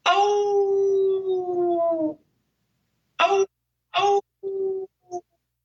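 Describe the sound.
A person imitates a hound dog or wolf howl: one long, sustained, wavering howl, then four short yelping howls trailing off, loud with no other talk.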